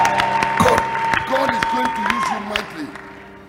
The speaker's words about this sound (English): Come on, clap your hands and scream like your voice is yours and praise God.